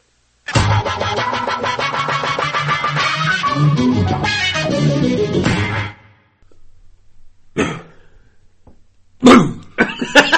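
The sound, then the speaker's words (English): A long, rough coughing fit runs for several seconds and then stops, followed by a pause and a few more short, sharp coughs. “They wasn't supposed to get back into it by coughing.”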